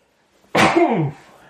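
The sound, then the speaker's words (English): A single loud sneeze bursts out of silence, a sharp breathy blast sliding into a short voiced, falling tail that fades after about half a second. “Do you think that was a vaccine sneeze?”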